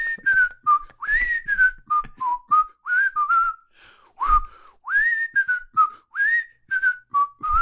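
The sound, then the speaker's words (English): A person whistles a lively tune alone, a quick series of clear, gliding notes with short breaths between phrases, fairly loud, with a brief thump partway through. “Can you whistle”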